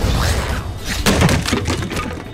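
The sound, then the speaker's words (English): A loud splintering crash as something falls through a wooden stable door and breaks the wood apart, with several sharp cracks and thuds tumbling over a couple of seconds, dense with no voices. “Fell through the stable door and broke all the wood.”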